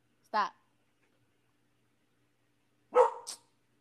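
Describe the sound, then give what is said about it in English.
A female dog looking out a house window gives two short, sharp barks separated by a couple of seconds of quiet; the second bark is fuller and trails into a brief yelp. “I don't know who she's barking at.”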